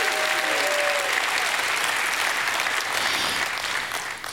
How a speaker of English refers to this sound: Somebody, if you agree with me, give God a hand clap and a shout of praise.